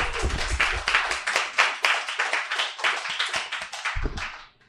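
A crowd applauds steadily, dense overlapping hand claps at a brisk rhythm, fairly loud and sustained for several seconds before fading out quickly at the end.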